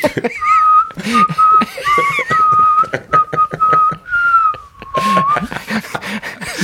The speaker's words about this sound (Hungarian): Viszont te jól fütyülsz.